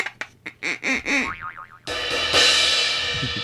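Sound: boing sound effect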